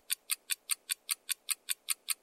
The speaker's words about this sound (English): Time's up! Did you guess falcon? Or for the experts, aplomato falcon? Then congratulations, you are correct.